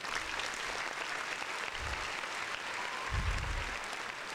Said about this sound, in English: Round of applause.